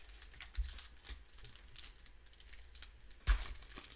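A foil trading card pack wrapper crinkles steadily, then tears open with one sharp, loud rip near the end, during a live pack-opening stream. The pack holds Kevin Gausman, Nolan Arenado, Aaron Nola and Ken Griffey Jr. cards. Nobody speaks.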